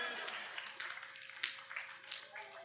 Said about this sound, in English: Clap for the Brew lady.